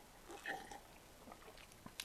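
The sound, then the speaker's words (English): Quiet mouth sounds of someone sipping beer: a soft slurp followed by a couple of small wet clicks and a swallow, with no talking. “No, it's a lot more, and then you go for the sip.”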